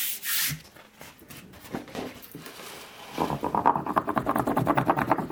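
A kitchen spoon rubs paper against a carved woodblock: a few scattered scratchy swipes, then a steady run of quick, rhythmic back-and-forth strokes, dry and papery, with no voices.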